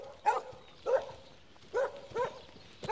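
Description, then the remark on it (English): A farm dog barks four times in short, sharp bursts with uneven gaps, fairly loud, outdoors on a farm with no talking. “Is he actually a good farm dog?”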